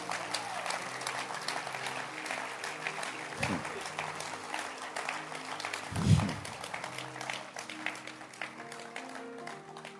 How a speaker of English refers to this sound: Clap your hands for the Basanta leaders.